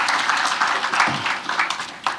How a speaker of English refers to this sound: So I just wanted to chip that in, that we are a generous church. Is that okay? Let's give ourselves another big round of applause.